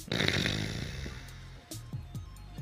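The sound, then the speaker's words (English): A loud, rough snoring snort from sleep apnea bursts out at the start, a raspy breath that fades within a second, followed by a few short, low, throaty catches. “Sorry, my apnea is kicking up.”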